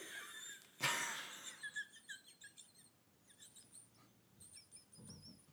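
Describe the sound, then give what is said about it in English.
A person imitates a mouse with a quick series of short, high, chirpy squeaks, fairly soft, following a brief rush of noise at the start. No one speaks. “Can they hear me squeaking?”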